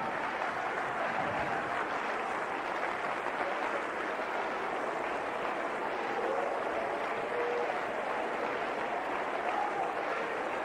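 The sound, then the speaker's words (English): A crowd claps their hands to the Lord steadily, a dense, continuous wash of many hands with no pauses, loud and even throughout, with faint voices blended underneath. “Clap your hands to the Lord again.”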